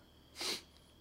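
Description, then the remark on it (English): A single quick, breathy nasal snort, a sneeze stifled halfway, over in about a quarter second, with near silence on either side. “Sorry, I thought I was about to sneeze there.”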